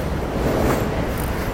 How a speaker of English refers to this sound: Hold on, there's a train coming. Can you hear me as the train's coming? Let me know so I know I can talk while the train is going, or if I need to pause like I pretended to do before giving you this message.